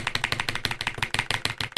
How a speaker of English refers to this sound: Type it away. Furiously typing away.